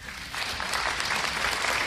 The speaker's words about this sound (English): All of you are clapping.